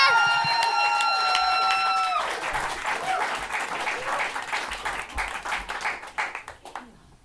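A comedy-show audience applauds a stand-up comedian being introduced, with a sustained whoop or cheer riding over the clapping at the start. The applause then thins out and fades toward the end.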